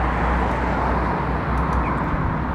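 A truck drives past, a loud, continuous low engine and road roar that holds at the same level throughout, with no voices.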